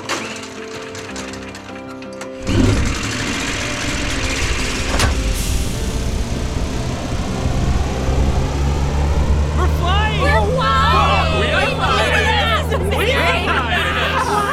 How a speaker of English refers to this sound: Now it's time to start the engine!